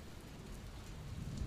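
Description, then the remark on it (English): Steady, hissing rainfall fills the short stretch while a low rumble of thunder swells gently toward the end. No voices are present. “Let's imagine it's a rainy day, and you decide to play a board game with your brother.”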